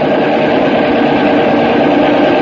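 The engine of a bulletproof car runs steadily as it is driven, a loud continuous rumbling drone with a broad, gritty texture and no breaks, holding an even level throughout without any voices.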